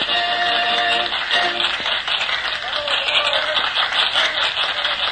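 An audience in a London theater applauds a performer with his dummy as he concludes his bows, in a steady, dense wash of clapping that holds at an even loudness throughout, with a few faint tonal notes briefly showing through at the start.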